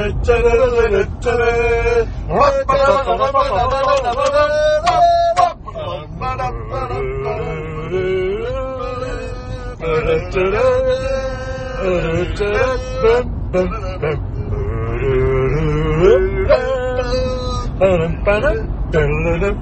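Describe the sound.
A steady low rumble of road noise fills a moving car's cabin throughout on the way back, with several voices talking and chanting "3-0 to the Albion" loudly over it.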